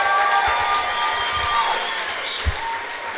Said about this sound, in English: Huge round of applause for Carmen Yulín Cruz.